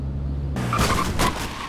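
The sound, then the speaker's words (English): A car hits a pedestrian crossing at a roundabout: after a low engine hum, a sudden loud burst of road noise and tire squeal, with two sharp crashes in quick succession. “He just got hit by a car.”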